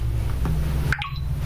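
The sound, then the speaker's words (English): A short electronic beep from a smart grill after the start cooking button is pressed in its app, a quick few tones starting with a faint click, heard over a steady low humming drone with no one talking. “Hear the beep”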